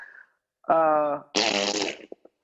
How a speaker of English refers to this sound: Somebody just fart? What? Yeah. Raccoon human hybrids do that.